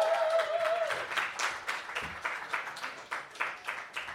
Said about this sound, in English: Let's give a big round of applause while she's walking up to the stage. Woo!